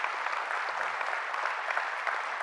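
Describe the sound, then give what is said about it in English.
A steady round of applause from a large group for the staff team, dense clapping filling the whole stretch at an even, moderately loud level with no voices rising above it. “Would you just give them a round of applause today?”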